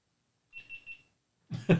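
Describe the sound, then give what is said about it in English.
A GoPro camera beeps three times in quick, even succession, high and thin, then goes quiet before a short, rough cough-like noise. “It's the GoPro.”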